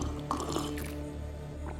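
Someone drinks water from a bottle, with soft wet gulps and liquid sloshing against a low steady background, no talking.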